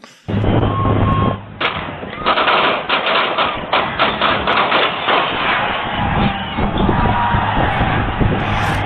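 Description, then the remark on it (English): Rapid bursts of actual gunfire crack out in quick succession, loud, over a muffled background of crowd noise, with sounds of people scrambling as the shots continue. “I have audio of the actual gunshots, like the actual gunfire.”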